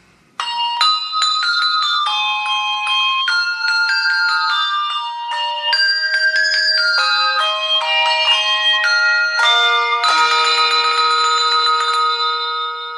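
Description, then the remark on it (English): Clear, ringing Christmas bells slowly chime We Wish You a Merry Christmas one note at a time, each tone sustaining and overlapping the next, loud with no voices, from the 1989 Hershey's Kisses Christmas Bells TV commercial. “You've got those lines of Hershey's Kisses and they're slowly playing We Wish You a Merry Christmas on actual Christmas bells.”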